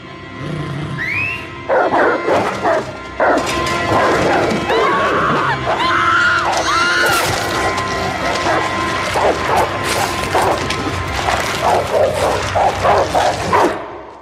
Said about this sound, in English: They're really quite amazing, and they don't compare to the sound, of course, of a baby getting ripped apart by dogs, which is the signature sound of this episode. Let's hear that.